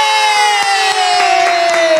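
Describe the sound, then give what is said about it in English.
A loud, steady burst of crowd cheering and whooping with scattered claps, topped by a sustained, slowly falling whistle-like tone, filling about two seconds without pause. “Oh, I don't have my applause up.”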